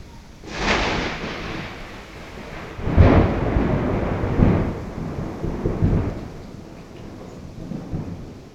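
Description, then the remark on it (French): A thunderstorm in the mountains of Laos at the end of the rainy season rumbles over steady rain, with deep rolling thunderclaps building and fading several times, one especially loud crack around the middle, then a lingering low grumble under the downpour. “Comme cet orage dans les montagnes laotiennes.”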